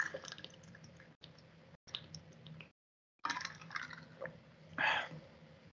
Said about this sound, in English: I got to get a water break for a sec.